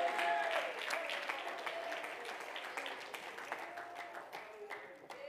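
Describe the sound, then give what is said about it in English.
An audience clapping their hands in a dense, steady wash of claps throughout, with raised voices and shouts mixed in underneath. “Come on, clap your hands and shout with a voice of triumph.”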